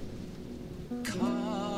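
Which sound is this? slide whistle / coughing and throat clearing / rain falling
rain falling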